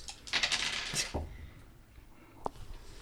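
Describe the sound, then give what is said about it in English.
Dice are rolled across a tabletop during a game, a quick burst of rattling clicks lasting about a second, followed by a lone click a moment later. Fairly quiet, with no talking. “Everyone, roll your dice.”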